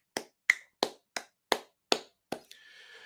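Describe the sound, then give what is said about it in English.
A single person claps about seven times as a round of applause for Miami tight ends coach Stephen Field. Each clap is sharp and crisp in a steady, even rhythm, followed by a faint lingering hum once the clapping stops. “Can we give him a round of applause? I'm going to do it.”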